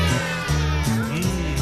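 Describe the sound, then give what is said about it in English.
A child's voice imitates a cat's meow with loud, drawn-out, wavering vocal cries whose pitch rises and falls, running continuously through the short clip. “Give me a meow, go.”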